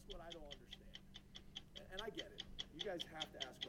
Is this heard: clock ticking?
yes